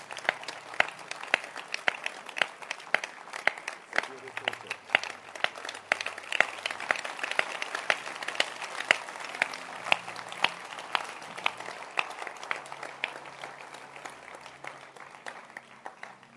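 A crowd applauds steadily, many hands clapping in a dense, even patter with sharp individual claps standing out, sustained for the full stretch without voices.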